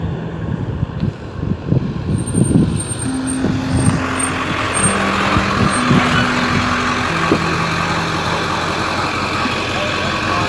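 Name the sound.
tow truck arriving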